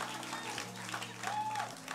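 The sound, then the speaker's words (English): An audience claps steadily throughout during a sermon, a dense, even wash of applause over a sustained low organ-like chord, with a brief high whistle-like tone rising in partway through. “That, you know, when you hear that kind of thing, just get good to clap.”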